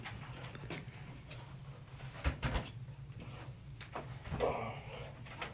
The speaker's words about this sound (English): Good thing I'm absolutely yoked, so I can move those chairs like nothing.